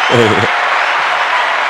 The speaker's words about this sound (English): Woo! Round of applause for correct spelling out there.